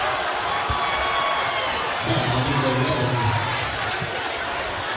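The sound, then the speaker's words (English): A basketball crowd cheering for Stewart's Creek roars steadily throughout after a steal, slam dunk and foul, the noise swelling louder around the middle, with indistinct voices mixed into the dense wash of sound. “Puts some pressure on him, and Harris gets this Stewart's Creek crowd going.”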